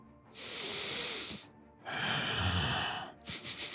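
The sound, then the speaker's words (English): Loud sniffing from a dragon: two long, hissing, breathy draws of air, then a quick series of short snuffling sniffs at the end. No one speaks. “like sniffing sound, you look behind you and realize that the dragon...”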